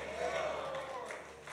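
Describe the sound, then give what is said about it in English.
An audience claps together in a dense, steady wash of applause that holds an even level throughout, with crowd voices mixed in underneath. “Come on, let's give our hand clap together one more time.”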